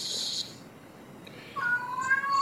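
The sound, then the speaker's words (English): A cat named Tiger, wanting out, lets out a long, drawn-out meow, rising and wavering toward the end, preceded by a brief burst of hissy noise and a moment of quiet. “Oh, and that's Tiger.”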